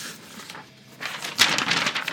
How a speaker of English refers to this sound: As he pulls the paper up.